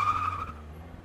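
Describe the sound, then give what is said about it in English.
A beat-up car with an unserviced engine rumbles roughly by, with a brief high tire squeal as it suddenly speeds off, the noise fading over about a second. “As she chats to another would-be customer, the sound of a beat-up car rumbles by and then suddenly speeds off.”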